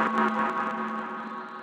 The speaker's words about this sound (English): Sorry, there's... massive delay feedback in the synth. There's massive delay feedback distortion.